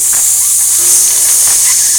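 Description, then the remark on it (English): A small, newly installed replacement radiator gives off a steady, loud hiss, sharp and airy like an air hose, running continuously with no break and faint low rumbles beneath it. “This one hisses. It almost sounds like an air hose.”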